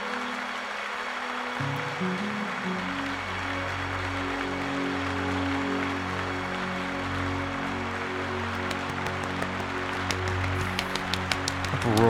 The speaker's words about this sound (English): Applause. Clap.